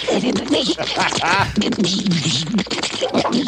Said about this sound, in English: Yes, the tentacles out front on the drawbridge, and they sound like, you know, Donald Duck having a freaking orgasm or something.